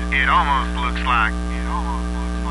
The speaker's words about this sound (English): Are you seeing this? I must be getting interference.